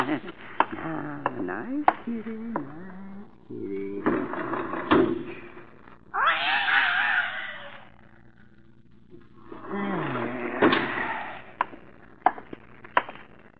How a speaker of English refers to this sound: Oh. Cat just went out the door. Mm-hmm. Didn't I hear the kitty meowing? Where'd he go? He just walked out of the door.